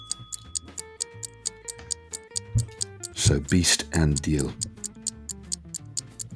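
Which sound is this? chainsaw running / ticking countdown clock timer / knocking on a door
ticking countdown clock timer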